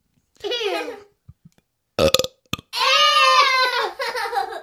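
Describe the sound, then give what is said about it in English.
A loud burp drawn out for nearly two seconds with a wavering, croaky pitch, preceded by a brief childlike vocal sound and a few sharp clicks. “No, that was real. You can make yourself burp.”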